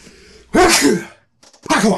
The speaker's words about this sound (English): Bless me. If you're at home, just go out there and bless me because I could be dying right now. You never know when a sneeze comes on.